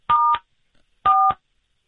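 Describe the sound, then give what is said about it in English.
Two short electronic keypad tones heard during a cell phone call, each a steady dual-pitched beep about a quarter second long, spaced roughly a second apart, clear with silence around them and no talking. “What's with the buttons that are pressing here?”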